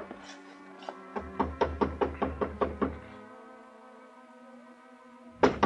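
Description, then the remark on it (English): A quick run of about eight firm, evenly spaced knocks on a wooden apartment door, loud over a steady sustained musical tone, followed by a pause and a couple more thumps. “walked 3 blocks to Carla's apartment house, climbed the stairs, and knocked on her door”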